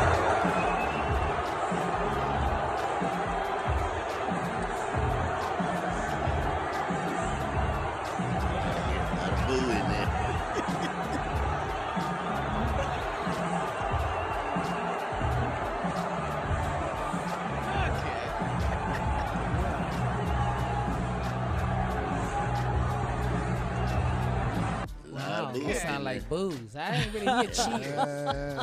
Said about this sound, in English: This time it was on Saturday night at a UFC match in Madison Square Gardens when the president and his sons, Donald Jr. and Eric, entered the arena. He was met with a mix of boos and some cheers, too.